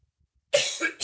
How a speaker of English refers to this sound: Editing these things is interesting after we've been sick because there's a lot of those coughs in there from both of us.